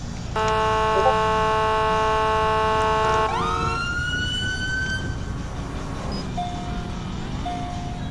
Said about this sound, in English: All right, on the horn and on the siren.